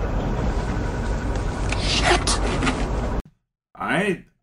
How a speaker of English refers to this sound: But how about the background of the car noise? You have the little ee-oo-ee-oo-ee-oo of like just the frame of the car like squeaking around and then the rumble of the engine. But it sounds like crickets.